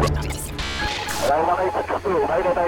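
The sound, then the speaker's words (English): Harsh bursts of radio static and crackle cut in and out, then give way to a garbled, distorted voice like a crackly intercom announcement, loud throughout. “Interference? What does he mean, emergency?”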